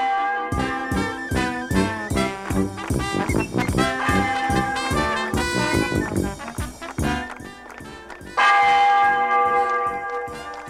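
Church bells ring out in a rapid, clanging peal, strikes overlapping densely with bright ringing overtones, loud, building to a sustained wash of tolling near the end.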